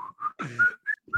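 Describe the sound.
A person whistles a short tune of several clear, steady notes at varying pitches, moderately loud, with a brief buzzy vocal sound breaking in partway through.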